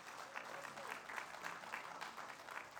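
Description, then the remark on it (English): A crowd applauds a student honored with National Honor Society stoles and a 3.93 GPA, many hands clapping steadily in a dense, even wash of sound that holds at a consistent moderate level throughout, with no voices standing out. “She deserves another round of applause for that.”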